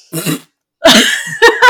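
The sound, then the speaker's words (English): A voice imitates a splat with loud mouth noises: a short throaty burst, a brief pause, then a longer wet sputtering blast ending in two quick pops. “Okay, then make your best splat sounds.”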